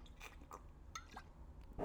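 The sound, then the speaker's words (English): A few soft, wet slurps and sucking noises as someone sips beer, ending in a louder swallow-like burst. No one speaks. “I'm going to take a sip of my beer while we're on the mic right now.”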